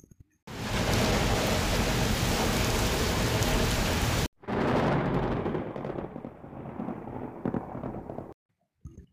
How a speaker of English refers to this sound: There was a lot of traffic and it started to rain hard.